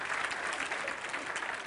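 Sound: audience clapping hands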